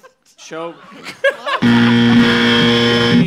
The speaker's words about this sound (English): I don't know why that buzzer just sounds like my life.